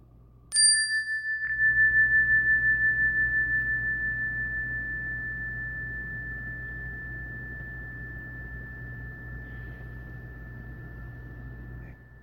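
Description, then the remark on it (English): A single meditation bell is struck once, giving a bright, clear tone that rings out and sustains for many seconds, fading very slowly over a low steady hum. “There's a minute or two of instructions on this practice after the bell.”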